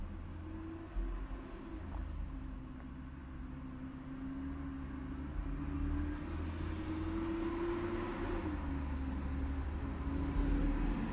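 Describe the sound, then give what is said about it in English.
Steady low rumble of heavy road traffic, with trucks and buses droning and a tonal hum that rises and falls as they roll past; no one speaks. “You can hear all the trucks and buses.”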